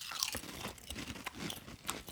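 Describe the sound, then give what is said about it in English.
Crisp, brittle crunching as someone chews potato chips, a steady run of sharp bites and grinding chews repeating every fraction of a second, with no talking. “It tastes like chicken twisties.”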